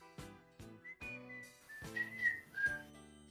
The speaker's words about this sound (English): He'd have the crowd whistle. Because everybody who went to see him knew the bit, so.